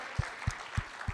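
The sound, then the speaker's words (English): A group claps steadily after a spoken testimony about faith in Jesus Christ, in a soft, dense patter, with a few heavier claps landing at an even rhythm of about three per second. No one speaks. “Britt's not here, but we'll clap.”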